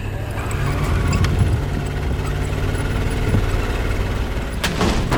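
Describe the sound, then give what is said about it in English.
A car engine, started by remote starter on a film set, runs loud, holding a steady rumbling rev throughout, with a couple of sharp bursts of noise near the end and no talking. “Remote starter! Revving up!”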